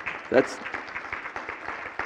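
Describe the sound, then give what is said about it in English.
A church audience applauds a guest preacher with dense, steady clapping that fills the whole stretch at a moderate level, with a brief vocal cheer or shout rising over it near the start. “that's honor to whom honor is due, but that's also clapping for God is what that is because of what he's done in your life.”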